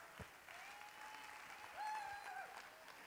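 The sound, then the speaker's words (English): An audience claps their hands in a steady, dense wash of applause at the preacher's call, with a few faint whistles or cheers rising above it partway through. “Clap your hands like you're not guilty.”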